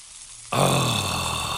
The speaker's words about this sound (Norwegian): På grillen ligger noen halvbrente pølser og freser.